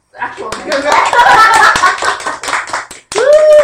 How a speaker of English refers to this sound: Yay, that's true. Hand clap.